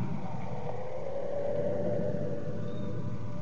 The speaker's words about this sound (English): Little traffic lights here, just a small cross on the normal globe, are now red. The cars pull up and stop.